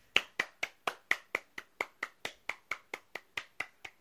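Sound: hands clapping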